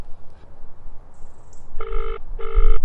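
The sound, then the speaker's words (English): Two bursts of a telephone ringing tone heard over a call line, each a harmonic electronic trill lasting about half a second, fairly loud against a low background hiss. “It's ringing.”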